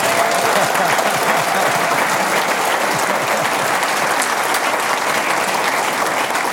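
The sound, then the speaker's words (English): Sustained applause from a large audience giving their president, President Thrasher, another round of applause: a dense, even wash of clapping that holds steady at full volume for several seconds without pause or voices standing out. “I would like for us all to give our president another round of applause.”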